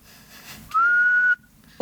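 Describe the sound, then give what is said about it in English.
A person whistles one loud, steady note, held for just over half a second like a referee's blast to start a Euros football match, with no talking around it. “Any of you whistle? Blow the whistle to get the match started.”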